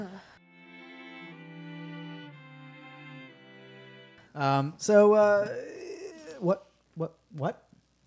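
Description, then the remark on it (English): A female cat makes drawn-out, wavering cries, then breaks into a loud burst of sharp chirps and short meows, excited chatter as she goes after a fly. “Well, my vicious killer cat, decided that she wanted to go all medieval on a fly.”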